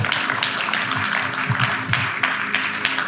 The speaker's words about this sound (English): Clap your hands for God.